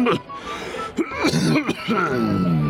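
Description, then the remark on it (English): Several harsh, chesty coughs from a person with a slight chest affliction burst out loud in a rough, uneven series, tangled with strained, voiced throat-clearing sounds and no spoken words. “Unfortunately, the laugh is overshadowed by my miserable cough. I fear I have a slight affliction of the chest.”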